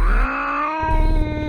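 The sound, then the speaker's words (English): A cat, Jet, growls as she backs away in short, stiff steps with arched back and bristling fur, in one continuous, loud, tense note lasting over a second, with a steady tonal whine on top and a rough, pulsing rumble underneath that thickens partway through. “She backed away in short, stiff steps and began to growl.”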